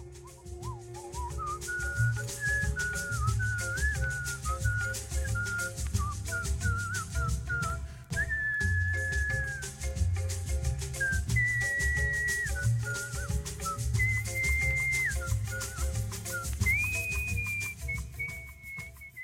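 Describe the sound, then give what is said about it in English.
Bright, sustained human whistling carries a melody over a steady beat and low instrumental backing in a song track, with several whistled lines layered into harmonies that glide and hold long notes. “it was … doing this incredible layered whistling”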